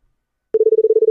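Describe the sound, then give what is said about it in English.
After a moment of silence, a voice mimics a European telephone ring by rapidly trilling the tongue, producing a steady, pulsing buzz at a single pitch that continues evenly until the end. “This is a whole thing with people doing their tongue to the phone, the European phone sounds.”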